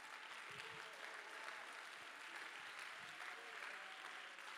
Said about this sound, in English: Come on, if you believe it, you need to clap your hands right now.